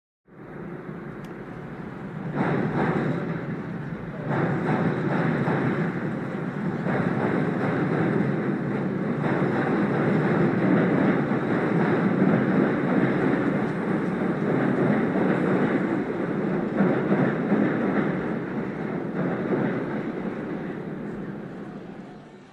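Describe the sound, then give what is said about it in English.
A Chicago Union railway train rumbles past on tracks beside Northwestern Field on Central Street in Evanston in 1920, during a college football game: a steady, loud roar with rattling wheels that swells in quickly and holds for about twenty seconds before easing slightly. “The Chicago Union's railway tracks went beside the sidewalk by Northwestern Field on Central Street.”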